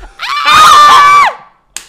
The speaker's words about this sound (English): Screaming. That is the worst one ever. Oh my gosh. That's a weird, let's skip that one.